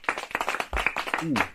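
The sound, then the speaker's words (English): A short burst of audience applause, dense overlapping claps throughout, with a voice rising over the clapping near the end. The audience claps on request for everyone who can eat sushi with chopsticks. “Yo, give me a quick applause for everybody that can eat sushi with chopsticks.”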